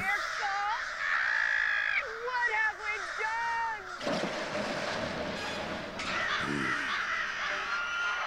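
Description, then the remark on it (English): A large flock of crows caws loudly and constantly, harsh overlapping calls filling the air, with a burst of rushing noise midway like wings or wind. “That's not an eclipse, Nathaniel. Those are birds! Birds!”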